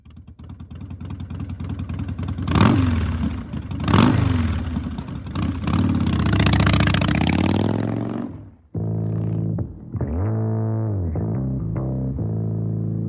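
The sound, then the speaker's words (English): A motorcycle engine revs hard in several sharp throttle blips, then roars in a long sustained rev before cutting to a lower, steady rumble with a few smaller revs. Loud, no voices. “I was really afraid of the sound of a motorcycle.”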